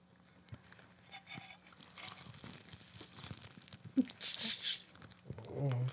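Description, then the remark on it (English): Crunchy bites into fried chicken followed by wet chewing, with irregular crackly bursts that grow louder and denser toward the end. “Take a bite.”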